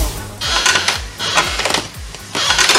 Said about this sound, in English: Oh. Hear that, everyone? It's a rocking chair.